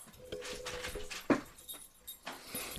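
A blind dog lets out one sharp, high yelp, short and sudden, after running into something, standing out against a low, hissy background with faint rustling and no one speaking.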